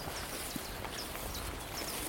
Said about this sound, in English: So it's nice, we've got 10 species of warblers on the fen, and there's the chiff-chaff just gone through.